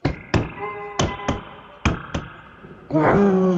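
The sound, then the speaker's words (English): A dinosaur stomping sound effect: six heavy, booming thuds falling roughly in pairs, followed by a loud, drawn-out growling roar at the end. “I have a sound of stomping of a dinosaur.”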